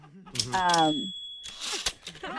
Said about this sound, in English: I'm sorry, it sounded like a typewriter? Oh, yeah, yeah, it is a typewriter. I'm just writing down what you're telling me.